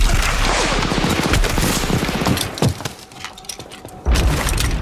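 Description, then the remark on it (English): Loud movie gunfire from the Thompson submachine gun carried by Tom Hanks in the film Saving Private Ryan, rapid automatic bursts rattling almost continuously, then a brief lull before another heavy blast near the end. “I mean, I think that basically the Thompson sound that Tom Hanks has in that is truly iconic.”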